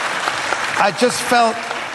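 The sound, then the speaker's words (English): An audience applauds Sean Locke as a tribute in a steady, dense wash of clapping that fills the whole two seconds, while a man's voice speaks briefly over the top. “Round of applause for Sean Locke.”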